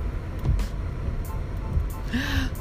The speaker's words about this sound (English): I hope I killed it. I don't even know where it went. I just sprayed my windshield wiping fluid. And it just flew somewhere.